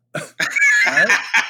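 A few sharp coughs, with a strained, voiced rasp drawn out between the first bursts and a final short cough at the end.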